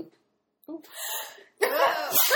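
A sneeze: a short sharp intake and a hissing build-up, then a loud, harsh, breathy burst that trails off. Two noisy bursts in quick succession, with no talking over them.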